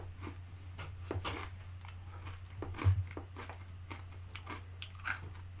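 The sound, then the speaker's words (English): Crunchy biting of a candy bar followed by steady chewing, with a series of crisp crackling bursts at an uneven rhythm over a low hum, one sharper crunch standing out near the middle. “Yeah, it kind of looks like a Twix, but they forgot to split it down the middle. Into two separate bars. But let's give this a try. Very crunchy.”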